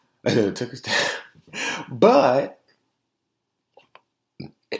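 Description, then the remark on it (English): Several loud burps from a person who has just eaten nuggets follow one another in quick succession, each a throaty, gurgling belch, then things fall quiet apart from a couple of faint clicks. “I ate some nuggets. I'm burping all ridiculously and shit.”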